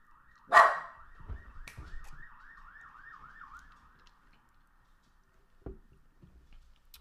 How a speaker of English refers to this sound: But then they had the police siren and everything. I was scared too.